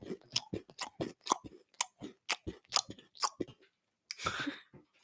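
Loud chewing with wet, smacking mouth noises in a quick irregular rhythm, followed by a brief rougher crunchy burst near the end; no talking.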